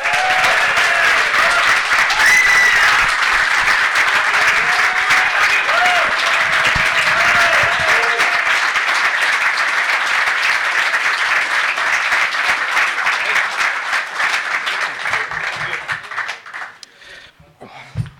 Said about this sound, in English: Perhaps one of the finest crosses of the ball to ever wear the black and white shirt. Please give a huge round of applause to NOLBERTO SOLANO.